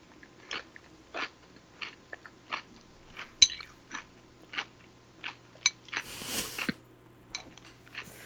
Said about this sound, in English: I'm going to chew now.